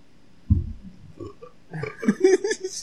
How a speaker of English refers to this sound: What was that? But he burps over it.